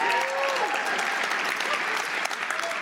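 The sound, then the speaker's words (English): An audience applauds steadily at the mention of Destination Dogs, a hot dog place, a dense wash of clapping that holds at an even level for a few seconds, with faint voices and cheers mixed in. “And those of you who didn't applaud, unless you're a vegetarian, you fucking go there.”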